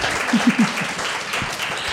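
An audience at the Cactus applauds a guest in a steady wash of dense, crackling claps that holds at an even loudness through the whole two seconds, with a few brief low vocal bursts near the start.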